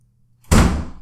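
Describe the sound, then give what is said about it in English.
A door is shut with a single solid, fairly loud thud after a moment of near silence, its boomy low impact ringing out and fading over the following half second. “Close that door.”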